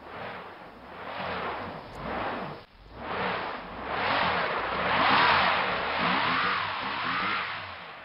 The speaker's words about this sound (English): That I didn't like that sound. That was a car stuck in the snow. Yeah, I've heard that sound many times. Really? And it's not fun.